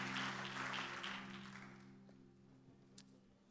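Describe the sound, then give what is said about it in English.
An audience at a morning worship service claps hands in praise to the Lord as they are seated, a dense burst of applause that fades over a couple of seconds, while a held organ chord sounds underneath and lingers after the clapping dies away. “Give the Lord a good hand clap of praise as you're being seated this morning.”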